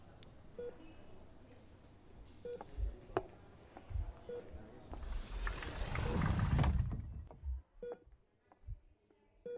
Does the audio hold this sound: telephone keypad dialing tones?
yes